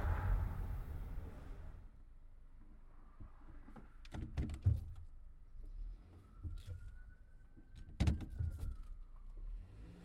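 A truck's low engine rumble runs steadily throughout, with a few sharp clicks and thumps and a faint whining tone rising then fading midway, as if heard from inside the cab.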